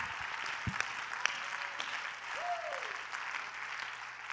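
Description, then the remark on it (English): An audience claps hands together in a steady, dense wash of applause that fills the room without pause, with a brief faint voice-like tone rising and falling partway through. “If you believe that, clap your hands one more time unto the Lord.”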